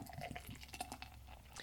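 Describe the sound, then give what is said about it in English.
Beer being poured, a steady splashing gurgle of liquid filling a glass with small drips and fizzing bursts, heard alone for a couple of seconds; a Mandarin and Mango Crush fruit and field beer from Dogfish Head Brewery in Delaware. “I'm pouring a Mandarin and Mango Crush from Dogfish Head Brewery in Delaware.”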